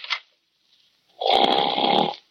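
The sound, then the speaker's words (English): A dog snores while asleep in the den: a short snort, then a long, loud, rasping inhale with a buzzing rattle, with no talking. “Oh, darn it. The dog's asleep.”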